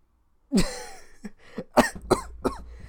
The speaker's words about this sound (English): If you haven't noticed, I still have my cough. It's been 2 months.